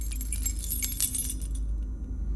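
Keys jingle and scrape as a key is placed into a door lock to unlock it, a quick cluster of bright metallic clicks and rattles over about a second and a half, then stop, leaving a steady low hum.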